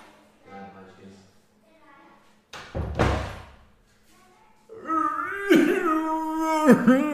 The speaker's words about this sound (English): Let me go shut the door over here. I got the kids yelling in the other room.